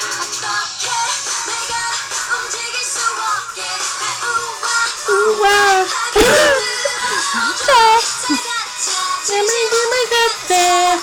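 Bright, loud K-pop song by a girl group, their debut song, with high female vocals gliding over a dense, full electronic backing that stays energetic and steady throughout.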